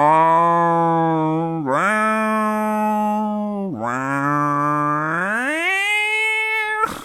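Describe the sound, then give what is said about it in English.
A loud, buzzy synthesizer tone yowls like a cat, its pitch sagging and swooping twice before climbing in a long rising wail, sustained for several seconds with no talking, heard in a film scene where Stripe jumps into a YMCA pool and bubbling starts. “The synth here sounded like a cat in heat.”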